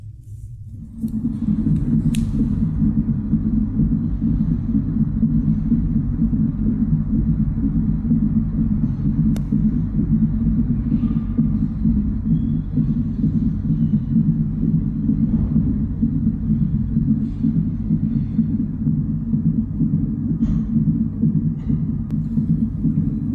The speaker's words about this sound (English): That's so powerful, as you're hearing the heartbeat of a child.